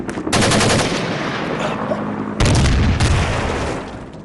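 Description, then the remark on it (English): Loud, rapid gunfire rattles almost continuously, with a fresh heavy burst midway, like sustained automatic fire with no voices. “Boom, boom, pasha. This is what we call a gun.”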